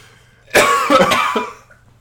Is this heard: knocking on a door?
no